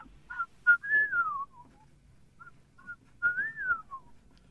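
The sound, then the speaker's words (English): A person whistles an imitation of the call of a bird called a whippoorwill in the Mid-County: short chirps leading into a rising-then-falling whistled phrase, repeated twice with a pause between, clear and fairly loud with no talking. “down here in the Mid-County, we have two birds that we call a whippoorwill, and one of them makes a sound like...”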